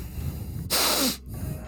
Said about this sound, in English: I will take in mighty sniffs of air. What do I smell? Sand.